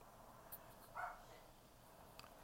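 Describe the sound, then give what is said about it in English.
A single short, faint dog bark rises briefly out of a quiet background with a couple of small clicks around it. “Shut your dog up, bro.”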